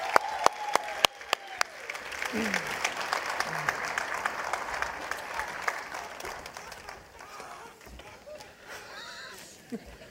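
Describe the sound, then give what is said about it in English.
A crowd breaks into sustained applause for the Kidstown Singers, dense clapping for several seconds with a few sharp claps standing out early, then tapering slightly toward the end. “have another hand for our Kidstown Singers.”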